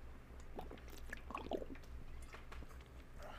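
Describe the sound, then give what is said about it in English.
Wet sounds of drinking water: a few soft gulps and sloshes of liquid with small clicky swallows, quiet and intimate over a low steady hum, with no talking. “I need some water. Do you got water?”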